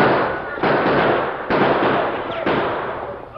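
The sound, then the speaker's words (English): Four sharp gunshots ring out at uneven intervals in a shootout between a sheriff's posse and men firing at them from a basin, each a loud cracking burst trailing into a rough, noisy wash that barely fades before the next shot. “Hey, they're firing at us. Give them some lead, men.”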